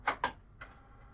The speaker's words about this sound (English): And that is the printer.